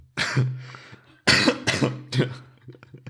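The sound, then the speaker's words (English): A burst of several harsh coughs in quick succession: one cough, a short pause, then a rapid cluster of three or four more, with no talking. “I have to cough.”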